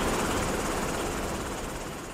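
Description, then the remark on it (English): A Black Hawk helicopter's rotor thrum drones steadily and loudly, a dense continuous roar with a faint rhythmic pulsing running through it, no voices present. “In a military situation, a reduction of 30 decibels is especially helpful with a steady, grinding background din, like, say, a Bradley tank clattering over asphalt, or the thrum of a Black Hawk helicopter.”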